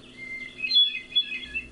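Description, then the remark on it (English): A bird sings a clear, flute-like phrase with sliding, ringing notes, a male hermit thrush's song with no one talking over it. “And that rule extends to when two male hermit thrushes are singing near each other.”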